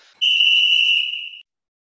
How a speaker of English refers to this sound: So that whistle means that it's time for the penalty kill.